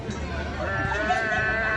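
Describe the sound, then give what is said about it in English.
A man's voice imitates a sheep's bleat in a sustained, wavering call that lasts under two seconds, moderately loud, with faint background murmur, as he milks a person acting as a sheep. “And he's doing the sheep sound while he's doing it.”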